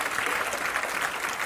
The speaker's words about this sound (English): I want every person to clap your hands like you mean it and that you understand what I'm saying.